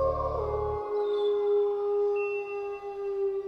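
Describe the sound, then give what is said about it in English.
A long, steady coyote howl rings out, one sustained wavering tone with a brief low rumble at the very start, fairly loud, with no talking. “Let's kick off with the coyote, or the coyote.”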